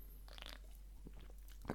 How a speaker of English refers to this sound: Sorry. The voice is a little weak, maybe too many hot takes here. So let me get another sip.